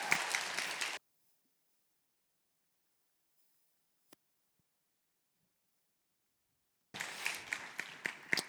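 An audience claps for the guests who came up, in a dense, steady burst that cuts off abruptly, then silence with a single click, before a second round of loud applause starts up again.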